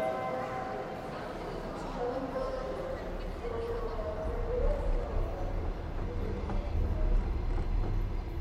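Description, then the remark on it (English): Steady low rumble and rattle inside a moving overnight train carriage bound for Odessa, continuous throughout and swelling slightly louder toward the end, with faint muffled voices in the background. “The funny thing is that we have this interview now in the train”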